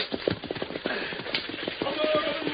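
Horses gallop at speed, their hooves clip-clopping in a rapid, steady rhythm that stays loud and close throughout, with a faint rumble of wheels or movement beneath.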